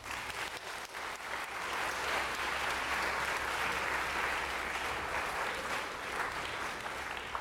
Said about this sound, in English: Can we get a round of applause for our winners?